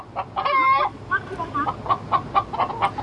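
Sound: chickens clucking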